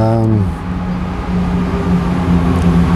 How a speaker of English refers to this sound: There goes the train up the Marylebone again.